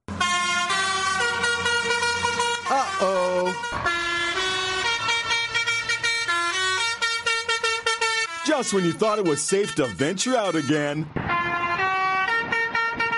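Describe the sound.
Loud vehicle horns on the roadways blare a bouncy, repeating children's tune in sustained musical tones, continuous, while a voice speaks over the honking.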